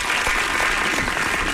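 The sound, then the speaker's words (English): A burst of applause sound effect played from a soundboard: a dense, steady wash of many hands clapping at even loudness for a second and a half, with no voices over it. “It's my soundboard now.”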